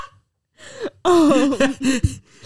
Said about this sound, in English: Do you want to let out the yawn first? I'm like trying to, but I keep on thinking you're going to want me to talk, so I keep on like stopping mid-yawn.